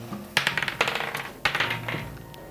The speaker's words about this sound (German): Wollen wir es auswürfeln? Okay. Würfel mir einen D20.